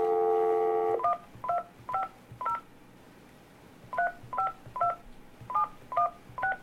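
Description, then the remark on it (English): A steady telephone dial tone cuts off, then a series of short two-pitch keypad beeps follows as a phone number is dialed, about ten presses in quick uneven bursts with a brief pause in the middle, clear. “I've dialed the number.”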